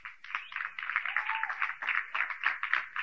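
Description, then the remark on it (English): A scattered smattering of audience claps, irregular and fairly soft, with overlapping hand claps forming a light, uneven patter that continues steadily without any talking. “But the reason there's a smattering of claps is because you know you haven't been doing it, even though I've been pounding it down your throat for the last 3 years, which leads me to why.”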